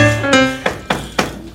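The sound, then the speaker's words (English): Three firm knocks on a door, evenly spaced, following a brief sustained musical tone that fades out as the knocking begins. “Let's knock on a random door and see who we might see.”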